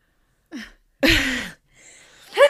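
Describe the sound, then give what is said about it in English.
A short sharp intake of breath leads into a single loud, noisy sneeze burst, followed by a brief faint sniffle and a small voiced sound. “Sorry. Bless you.”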